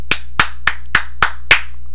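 Six sharp hand claps in a steady, even rhythm, loud, with no voices and a faint low hum underneath.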